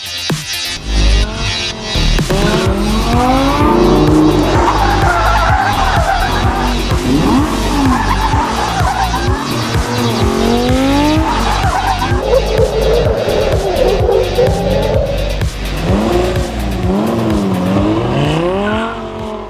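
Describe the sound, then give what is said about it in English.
A Lamborghini Gallardo driving hard, its engine roaring and rising in pitch while tires squeal and skid repeatedly throughout, loud and continuous with no talking. “But the most important thing for me is when you sit on the car, when you turn the key on and you start and you go and you drive the car.”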